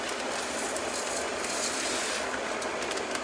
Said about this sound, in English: All right, my timer is done. Okay, timer's done, so I'm going to pour in the orzo now.